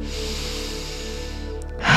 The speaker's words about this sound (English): We are breathing into the spaces where the stress lives, breathing in deeply, exhaling deeply. Creating more space with every inhale, more space. And with every exhale, we are letting it go.